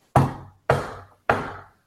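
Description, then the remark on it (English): Three firm, evenly spaced knocks on the wooden door of a temple, clear, each with a short resonant decay, measured rather than forceful, with silence around them and no voices. “And the group inside the temple hears a confident but restrained knock on the door.”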